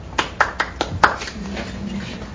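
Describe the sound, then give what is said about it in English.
Brief applause begins: five sharp, evenly spaced claps over about a second, then it stops, leaving a low steady murmur or hum underneath. “Hold the applause till the end.”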